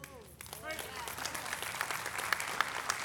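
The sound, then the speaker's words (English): A scattering of applause from about a third of a church audience, a steady patter of claps of moderate loudness that fills the moment, with a brief vocal call or whoop rising over it at the start. “A third of you are applauding.”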